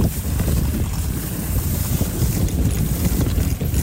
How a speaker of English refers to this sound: Now the sound you're experiencing and my bottom's experiencing is in the sled pulled by six wonderful huskies. Have a listen.